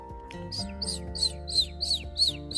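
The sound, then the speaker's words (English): A pet bird named Chirp, a colorful bird, chirps in a quick, regular series of about seven bright, high tweets, clear, over a soft, steady musical background. “That was Chirp. Chirp was a really pretty bird with lots of colors.”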